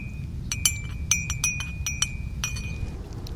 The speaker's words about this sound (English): Here I have some dandelion roots that we grounded, and we roasted, and then we grounded. And I have it right here in my bag. Let me get the boiling water ready. Put it in my mug, and we can make some dandelion coffee.